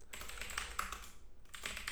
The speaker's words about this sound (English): There's going to be a lot of typing, so let's just go Mahomes.